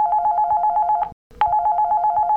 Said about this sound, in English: It's the phone.